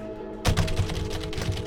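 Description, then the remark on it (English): After a brief hush, a computer keyboard sound effect starts clattering with rapid, dense keystrokes, fairly loud, continuing steadily to the end. “Did you just give me a keyboard soundbite?”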